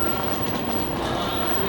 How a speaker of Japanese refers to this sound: のぞみ号ドア閉まります。ご注意ください。